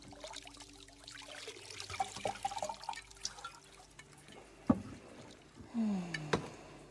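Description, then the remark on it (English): Unguent oil is poured into a hot bath of water, with soft trickling and scattered drips, a few sharper splashes and plops near the end. Fairly quiet, with no one speaking. “More unguents. Pour it in here.”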